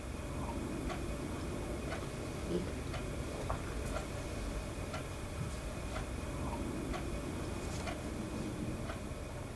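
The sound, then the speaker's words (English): A clock ticks steadily, roughly once per second, its sharp clicks cutting through a constant low rumble of room noise. No one speaks. “And I remember the clock ticking in the background, adding to the tension.”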